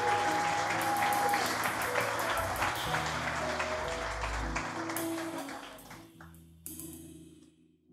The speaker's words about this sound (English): Give all our friends that drove in from far a big hand clap. Give Jesus a big hand clap one more time.